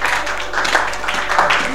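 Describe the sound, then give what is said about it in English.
An audience claps in a dense, steady patter that holds at an even loudness for the whole stretch, with voices faintly mixed into the applause. “It's a good thing to clap.”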